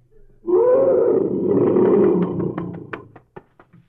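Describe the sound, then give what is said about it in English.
A huge lion lets out a long, loud, rumbling roar lasting about two seconds, then trails off into a series of short grunting huffs. “But when he roars, that's when the cowards climb the trees.”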